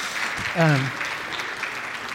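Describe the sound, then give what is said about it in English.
A crowd gives a steady round of applause to welcome a baby girl born the week before, dense clapping running throughout, with a short voiced cheer rising above it near the start. “Yeah, round of applause.”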